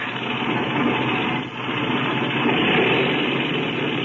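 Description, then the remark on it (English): An airplane engine is run up before takeoff while a pilot climbs into the front cockpit, roaring loudly and steadily, dipping briefly before surging back up, its rough, droning noise filling the whole clip with no voices. “Okay, clean out that engine while I climb into the front cockpit.”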